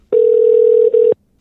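A single loud, steady ringing tone on a telephone line while a call is placed to what was believed to be former Detective Inspector Mark Franklin's home phone number in Rarotonga, Cook Islands. It sounds for about a second with a brief flicker near the end, then cuts to silence.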